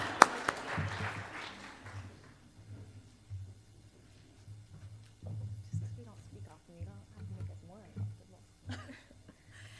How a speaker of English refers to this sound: I feel like we need to clap for them as they come up.